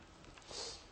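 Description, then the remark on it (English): A single short, breathy sniff through the nose from a person with a head cold, fairly soft, rising and fading within about half a second against faint background hiss. “I've been battling a cold for the last few days, so I'm going to be sniffing a lot.”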